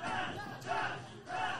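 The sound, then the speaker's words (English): A large crowd at a wrestling match shouts encouragement for a wrestler to get up in three rhythmic, chant-like surges, loud and dense, filling the space with a steady roar of many voices and no single speaker. “The crowd shouting for RBJ to get up.”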